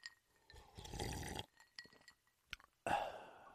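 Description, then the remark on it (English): Lemonade poured over ice in a glass: a steady, splashing pour lasting about a second, followed by a few sharp clinks of ice against glass and a final fizzy, crackling burst. “Let's pour it over some ice, nice and easy, and enjoy.”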